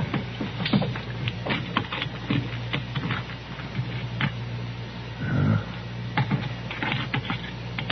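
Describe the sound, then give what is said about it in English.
Keys being tried in a suitcase lock: a run of small, irregular metallic clicks and scrapes over a steady low hum, with a brief murmur of a voice partway through. “Couple of keys I think will fit.”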